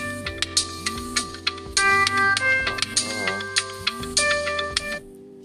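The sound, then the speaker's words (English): An alarm going off: a bright, repeating electronic melody of rhythmic tones with rising and falling pitch sweeps, playing loudly on its own for about five seconds before cutting off. “Oh my god, my alarm.”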